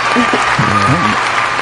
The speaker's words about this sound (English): We have, ladies and gentlemen, from Love and Hip Hop Atlanta. House of Margeaux is in the building. We need that round of applause.